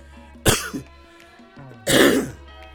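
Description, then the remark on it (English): Two loud coughs about a second and a half apart, each a sharp raspy burst with a short throaty tail, and no talking around them. “Ooh, excuse me, I'm gonna have to delete them two damn coughs.”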